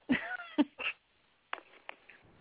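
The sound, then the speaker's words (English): A pet cat meows several times in quick short bursts, fairly loud, followed after a brief pause by a few quieter, scratchy sounds. “Oh, my cat.”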